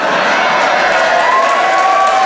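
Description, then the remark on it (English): An audience slow hand clap rising from a dense wash of crowd noise, the steady claps blurring into a constant, fairly loud murmur with no one speaking. “Who's doing that slow hand clap?”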